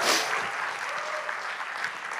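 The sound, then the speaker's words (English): The Freedom Church crowd applauds and cheers to thank its leaders, a dense, steady wash of clapping with scattered whoops rising over it, holding at a fairly even loudness throughout. “And so Freedom Church, could you help me give them a quick cheer and say thanks to our leaders?”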